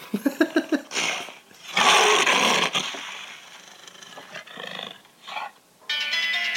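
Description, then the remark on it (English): A lion roars: a quick run of deep rhythmic grunts, then a long, loud, rasping roar, followed by quieter rumbling growls with no one speaking. “Yes, that was a lion.”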